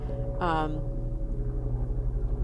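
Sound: helicopter flying overhead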